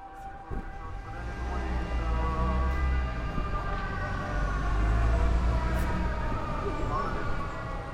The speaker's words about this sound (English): we were greeted by the first air siren of the trip. We pulled up in the beautiful historic centre of the city, opened the car doors, and heard the sound of the siren overlaid with the amplified prayers of the local church.